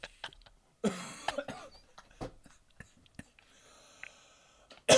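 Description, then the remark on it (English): Someone coughs after taking a hit, in a string of harsh, irregular bursts, with strained, breathy throat sounds between them and another hard cough at the very end. “I'm not going to cough right now. You're going to throw up.”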